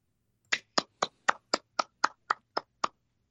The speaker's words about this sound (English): Well, he was clapping. I didn't realize my mic was still on.